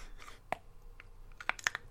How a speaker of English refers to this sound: Is he eating more of the Japanese stuff? It's a lollipop. Japanese lollipop. Crunching on.